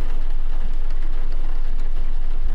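Steady rain falling in a dense, even hiss, with a few soft low thuds now and then. No voices, just the continuous wash of rain throughout.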